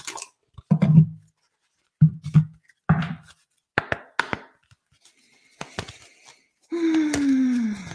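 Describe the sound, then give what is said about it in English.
Light, intermittent shuffling of an angel card deck ('Messages from your angels'): soft papery rustles, flicks and dull taps in short bursts with pauses, then a sustained low groaning tone sliding downward at the end. “And while I'm doing a little light shuffling, allow me to make my regular announcement about the Let Your Light Shine movement.”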